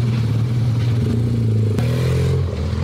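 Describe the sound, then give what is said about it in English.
A motorbike engine drones loudly, its low steady pitch dipping slightly midway as it rolls past, with faint clattering underneath and no voices. “Watch out. Motorbike.”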